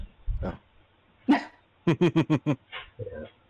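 A dog barks in a quick run of five sharp yips, with a few scattered barks and yelps before and after, loud with no talking.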